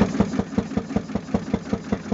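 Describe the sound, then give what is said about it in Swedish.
A hot-bulb engine thumps at a steady, fairly quick beat, roughly five dull knocks per second over a low droning hum, with no voices. “Men får jag fråga, var dunkandet ett sånt dunkande som från en tändkulemotor? Ett sånt här?”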